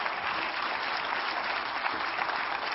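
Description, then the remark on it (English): An audience claps their hands in thanks to the Lord, in steady, dense applause that holds at an even level for a few seconds, many hands blending into a continuous crackle with no voices. “Clap your hands and give a Lord a thanks, somebody.”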